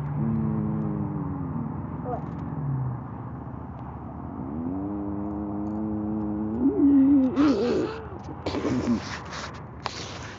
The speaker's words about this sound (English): This is bus.